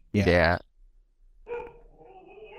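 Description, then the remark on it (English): A dog lets out one loud bark lasting about half a second, followed by quieter, fainter sounds in the background. “Your dog agrees too.”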